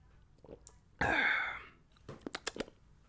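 A short, breathy slurp as someone sips water, followed by a few quick wet clicks and gulps of swallowing, fairly loud, with no talking.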